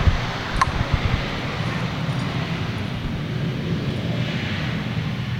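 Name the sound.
jet aircraft taking off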